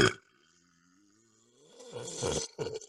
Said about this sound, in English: There you go. Wow. Now you can burp all you want.